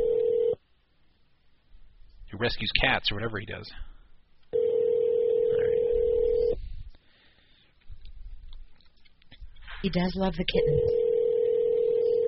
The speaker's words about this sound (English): Well, to my knowledge, this is a home phone. Oh, what's ringing right now? The one that's ringing right now is a home phone. It's not a cell.